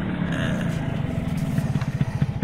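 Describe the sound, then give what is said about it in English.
A small, new lime-green moped's engine putters steadily, its low buzzing drone pulsing in quick, even beats that grow slightly louder and choppier toward the end, with no voices. “Got a new moped”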